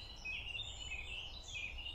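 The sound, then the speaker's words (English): Soft birdsong drifts through a quiet forest along the Deal River, a few high warbling phrases rising and falling over a low, steady background rumble, with no voices. “The gorgeous hush of the forest focuses my attention on the bird songs and the sounds of our footsteps breaking twigs.”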